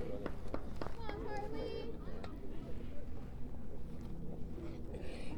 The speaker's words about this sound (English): Kind of a windy, overcast day here at CL High School.